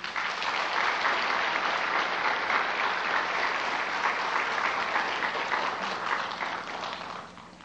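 Sustained audience applause, a dense steady wash of many hands clapping at even loudness for several seconds before tapering off at the end. No voices stand out.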